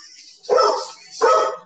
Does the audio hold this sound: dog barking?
yes